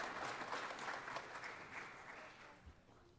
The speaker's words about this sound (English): 40 years together. We could clap for that. 40-year anniversary.